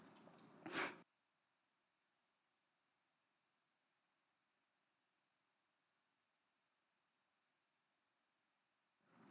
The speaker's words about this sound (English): I do apologize for my immense need to blow my nose.